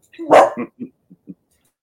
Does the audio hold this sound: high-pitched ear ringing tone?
no